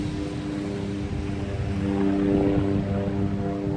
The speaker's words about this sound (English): And this is St Barths. Stavia. Oh, here comes the plane. Coming in for a landing.